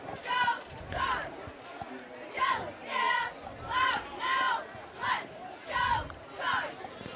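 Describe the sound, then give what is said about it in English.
A large stadium crowd at a football game on senior night chants and cheers in rhythmic, repeated bursts, about seven swells rising and falling in a steady cadence, loud and filling the space with a roaring background hum. “Good crowd for senior night, Steve.”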